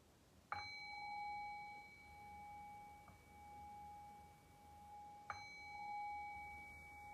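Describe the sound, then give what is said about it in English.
A meditation bell is struck to close a guided meditation, then struck again about five seconds later, each strike leaving a clear, sustained ringing tone that hangs in the quiet. No one speaks. “And I'll cue that by ringing the bell 3 times.”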